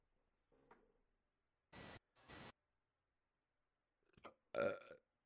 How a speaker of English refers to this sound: And the thing is, since I'm drinking beer, I have burps built up for days. So it's like, hiccup, burp.